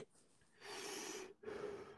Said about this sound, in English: Yeah, see, he's just breathing.